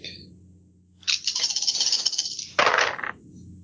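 Dice are rolled for a stealth check in a tabletop role-playing game, clattering across a hard surface in a loud rattle lasting a couple of seconds, followed by a second sharp burst of tumbling clicks as they settle.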